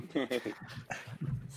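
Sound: dog whimpering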